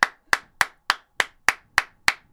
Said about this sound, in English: So I just want to give her a round of applause because she deserves it.